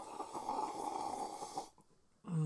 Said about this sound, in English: Oh, that was a weird grunt there.